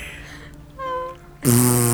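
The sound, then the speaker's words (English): A loud, buzzy fart, let out while bowing to a sensei at the end of a lesson, bursts in after a brief higher-pitched tone, rumbling low and raspy for about half a second. No one speaks. “And as I bow, I fart really loud.”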